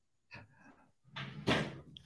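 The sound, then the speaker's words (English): A top drawer scrapes open in two pulls, a short rattle followed by a longer sliding rumble that ends in a loud knock. No voices. “All right, get in that top drawer of yours, buddy. Get in there.”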